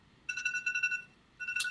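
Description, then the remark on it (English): A phone alarm rings with a bright electronic tone that sounds in a steady pulsing burst, pauses briefly, then starts again, fairly loud with no talking. “And my alarm telling me, I don't even know where my phone is.”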